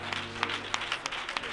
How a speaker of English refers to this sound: Could we just, in one mind and one accord, give God a hand clap of praise and worship